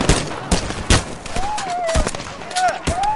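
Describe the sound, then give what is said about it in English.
A rapid, irregular burst of gunfire, after a man pulled a sawed-off shotgun at a stage: loud, sharp shots crack out several times in about three seconds, with brief whining, sliding tones sounding between the blasts. “And just then, the gunfire went off.”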